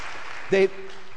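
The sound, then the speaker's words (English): A round of applause for the original team, a steady wash of clapping from a crowd, with a short voiced shout or cheer rising briefly above it partway through. “In fact, let's give them a round of applause, because they've done very well.”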